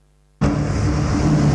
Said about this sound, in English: it's just loud. There is engines and there's honking and there is busyness and there's dust